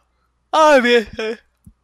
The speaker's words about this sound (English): Don't you fucking yawn at me.